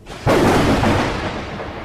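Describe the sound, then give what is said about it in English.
A sudden, loud thunderclap breaks after a brief quiet moment during a storm at night, then rolls on as a heavy, broad rumble that slowly fades. No voices are present. “No one should be out in this storm.”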